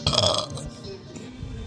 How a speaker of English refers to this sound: You got a burp? You got a burp.